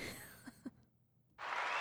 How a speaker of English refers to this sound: Nice. All right, that's enough. Oh, wow. Very short. Only a little bit of clappage.